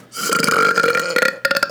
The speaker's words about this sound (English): Milk makes me burp and soda makes me burp, so this is... Is anyone sick of hearing us burp yet?